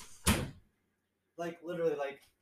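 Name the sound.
door being pulled open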